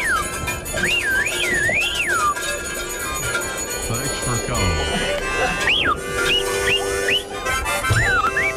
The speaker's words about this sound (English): I literally heard like one caller just going, woo, woo. I heard some weird whistling and all kinds of stuff.